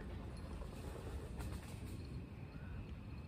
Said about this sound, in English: Ah, there's a train.